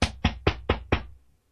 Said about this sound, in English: I would have a knock at the door.